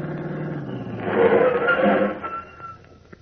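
A car engine hums and swells as the vehicle draws closer, peaks, then eases off and settles as it pulls to a stop right in front of a house, with no talking.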